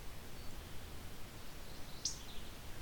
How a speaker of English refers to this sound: Morning warbler's a little further off, but maybe the one ticking at me above is another morning warbler.